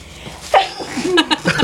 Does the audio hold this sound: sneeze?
yes